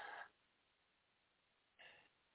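Two short, breathy coughs from a person with a lingering cough four weeks after a cold, separated by a pause of about a second and a half, fairly soft, with no talking in between.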